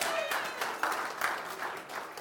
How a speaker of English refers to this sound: So let's give them a round of applause because they deserve it.